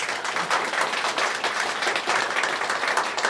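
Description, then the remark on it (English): An audience applauds to vote for the team Emergency Kitch in a competition: dense overlapping claps forming a continuous roar of clapping that holds at an even, fairly loud level throughout, with no voices standing out. “If you believe that Emergency Kitch should get the points for ISIS being solved by tea leaf reading, please applaud now.”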